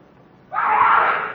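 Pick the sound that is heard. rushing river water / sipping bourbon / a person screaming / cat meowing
a person screaming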